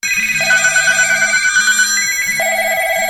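A small business owner's telephone rings insistently in rapid, repeating electronic bursts, loud, with overlapping tones layered into a busy, continuous jangle and no voices.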